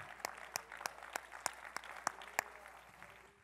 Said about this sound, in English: Oh, somebody clap your hands and give the Lord a shout of praise.